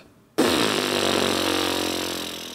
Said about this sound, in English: The vocal folds start vibrating like this.